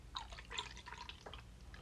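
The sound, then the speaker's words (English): A 5.5% ABV brown ale with cocoa nibs, marshmallow and chocolate ghost peppers is poured into a glass, giving a soft, uneven run of splashy gurgles and drips. The level is fairly quiet and no one speaks. “It is a brown ale with cocoa nibs, marshmallow, and chocolate ghost peppers. So let's give it a pour.”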